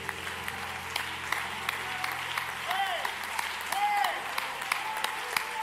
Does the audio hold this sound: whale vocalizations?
no